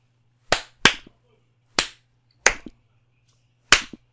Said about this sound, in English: Good. That last clap was good.